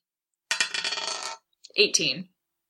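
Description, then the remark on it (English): Dice rattle and clatter across a hard surface in a quick burst of clicks, pause briefly, then tumble again in a shorter, clacking roll before settling. “All right, so roll that.”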